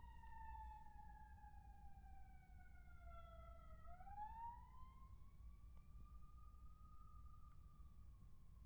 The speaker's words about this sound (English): Like, literally, I kid you guys not, about 5 minutes before I started recording here, there was a fire truck that went the other way. Now, I feel like it's the same fire truck.